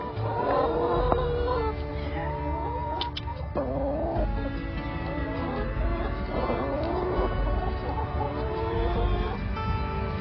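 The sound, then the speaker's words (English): Chickens in a chicken tractor cluck and murmur in a steady, overlapping chorus, with short rising calls scattered throughout against a constant outdoor hum. “You built this chicken tractor?”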